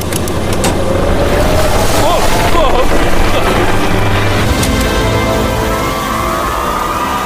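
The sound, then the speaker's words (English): Water gushes out of a newly drilled village well in a loud, steady roar of rushing spray, with a low mechanical rumble beneath and faint whistling tones drifting through. “It is raining! It's beautiful!”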